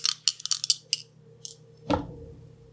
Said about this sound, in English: I rolled the same thing. And those dice are much better than your old dice. Right? Yeah. Plus, these are pretty Darvin themed. I'm digging those dice you got going on over there.